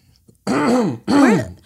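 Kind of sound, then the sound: human body sound, throat clearing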